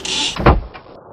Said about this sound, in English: Won't you shut the door? The rain's beating in.